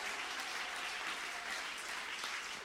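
A church audience claps in praise, steadily and densely, many hands blending into a continuous wash of applause that holds at an even, loud level throughout, with no voices standing out.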